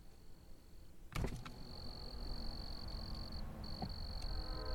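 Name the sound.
crickets chirping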